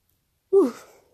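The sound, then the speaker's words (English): A short, breathy yawn from one person after a moment of silence, with a voiced tone that drops in pitch and trails off into a soft exhale. “I had a quick little yawn there.”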